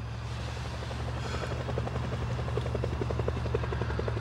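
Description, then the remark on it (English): A police helicopter flies behind the speakers, its rotor thumping in a fast rhythmic chop over a low engine rumble, loud and continuous throughout with no voices. “Boys, there's something flying behind us right now. It looks just like a police helicopter.”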